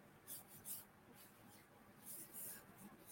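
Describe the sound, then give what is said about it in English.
A small piece of paper is flipped over and moved, giving several short, crisp rustles and swishes at uneven intervals, fairly quiet, with no one speaking. “Let me flip my little piece of paper over. I'll just move this one right here.”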